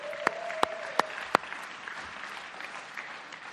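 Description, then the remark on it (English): Audience applause for a worship band during a church service, a dense wash of clapping that holds steady for several seconds, with four sharp, louder claps standing out early on and a faint steady tone underneath at first. “Anyway, let's give a round of applause, please, for our band today.”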